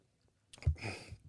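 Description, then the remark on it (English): A quiet sip of water: a soft knock of a cup against lips, then a brief airy slurp and swallow lasting under a second, with no talking. “I'll take a sip of water.”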